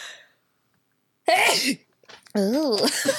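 A loud sneeze bursts out after a moment of quiet. After a short pause, a longer wavering vocal sound follows.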